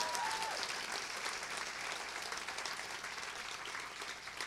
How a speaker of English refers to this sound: So a round of applause in advance for the folks that are going to be coming out here.